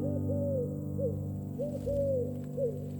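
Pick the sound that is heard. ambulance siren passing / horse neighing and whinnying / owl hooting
owl hooting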